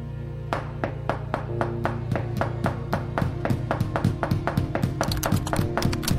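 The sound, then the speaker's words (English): Steady, insistent knocking on a door, a long run of sharp raps at a regular pace that quicken and grow louder toward the end, over a low background hum. “Knock all you want, you knob, but I'm done paying any more attention to you and your nonsense.”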